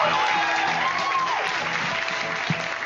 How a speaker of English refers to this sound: That's another long applause there. Have they always been that long? I don't think so.